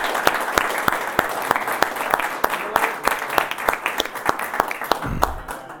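An audience applauds for several seconds, a dense patter of many hands clapping with sharper individual claps standing out, fairly close and steady before tapering at the end.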